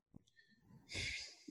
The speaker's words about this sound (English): I'd have to say, sorry, I'm breathing heavy.